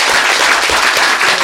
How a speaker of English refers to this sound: Let us give a huge round of applause to Jane Pallas.